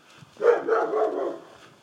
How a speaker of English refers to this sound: Oh, big scary dog. I don't know where that dog is. In number 63. House number 63. Has a noisy dog.